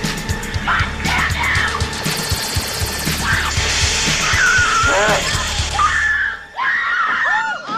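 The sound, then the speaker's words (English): A film character awakens screaming in class: a person screams loudly and repeatedly, the piercing cries rising and falling in several bursts over a dense, noisy background mix. “Awakens screaming in class, which is hilarious.”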